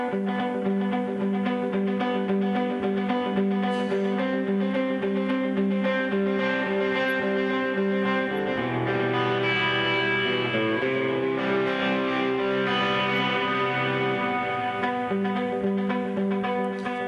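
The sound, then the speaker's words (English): A distorted electric guitar riff with delay repeats, played steadily and loudly for the whole stretch, with dense sustained harmonics and a lower chord change partway through. No one speaks. “So that's what, that's got some distortion on and delay”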